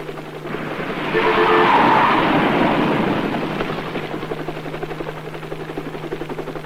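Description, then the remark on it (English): A helicopter passes overhead, its engine roar swelling to a loud peak within a couple of seconds, then easing into a steadier, fainter rotor drone with a light chopping texture. No one speaks. “The helicopter view would also help us to see how advanced planning and courtesy make all the difference.”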